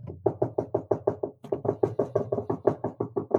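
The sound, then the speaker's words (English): A rapid, steady run of knocks on a door by arriving guests, dozens of quick even raps with a brief pause after the first second, fairly loud, with no one talking. “You know, I rambled on like I normally do, and now we've got the guests at the door”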